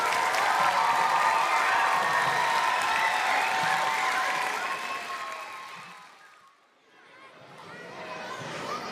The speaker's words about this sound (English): How about another round of applause for our awesome first graders?